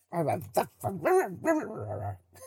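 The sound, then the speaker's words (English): A person imitates a dog with a quick series of voiced barks and whiny yips, lasting a couple of seconds with no other talk. “Are you a dog now?”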